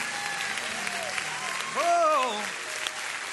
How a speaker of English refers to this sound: Let's give God a great big hand clap. Come on, somebody. Yeah!